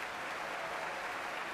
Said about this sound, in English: And you hear the applause for Gustavo Dudamel, music director of the Los Angeles Philharmonic Orchestra, taking the podium here at Davies Symphony Hall to lead the San Francisco Symphony in the Symphony No. 38, the Prague Symphony by Mozart.